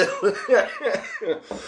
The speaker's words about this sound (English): And then we exhale the weed, and then we cough, and then, yeah, we're good.